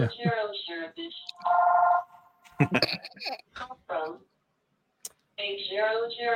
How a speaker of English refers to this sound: Is that my phone again? It's okay. You're popular. It's me calling you just to make a joke. It's your beeper.